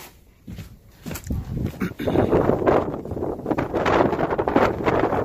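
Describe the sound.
Strong wind buffets the microphone outdoors beside a wind turbine, a broad, roaring rumble that swells after a quieter start and stays loud and gusty throughout, with faint voices and movement underneath.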